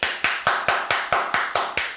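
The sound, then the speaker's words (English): Enthusiastic hand clapping, the kind someone does while watching a game when somebody gets it done, about nine sharp, crisp claps in a quick, steady rhythm over two seconds, loud and alone with no voices. “Like, when you be into a game and you start leaning forward and somebody get it done and you start clapping, but your clap is this one.”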